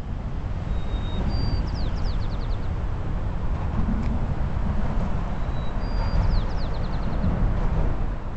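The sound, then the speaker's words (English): A steady low rumble of city traffic near the Golden Gate Bridge in San Francisco fills the whole recording, with a white-crowned sparrow's whistled song rising above it twice. “I'm guessing that is from the lockdown because the traffic is far quieter”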